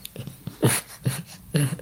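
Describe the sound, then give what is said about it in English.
A dog, Moshi, lets out a few odd, strained whimpering noises, three main squeaky bursts with softer breathy sounds between them, fairly quiet. “So that is him sound making weird sounds.”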